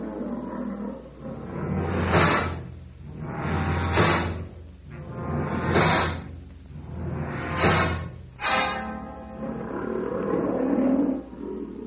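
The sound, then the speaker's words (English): An old lion's deep grunting roar at night: a series of about five heavy, breathy grunts at a steady, slowing rhythm, loud and rumbling with no voices over them. “Sounds like an old-timer. Listen to those grunts.”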